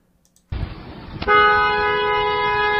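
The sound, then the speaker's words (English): A car horn blares in one long, steady honk from a woman sitting in a car that is chained to a tow truck with its back wheels up. The honk starts abruptly and holds loud, preceded by a brief rumble of engine or road noise. “And she honks, and then she starts driving to drive it off, and then it tips on its side, and now the car is on its side.”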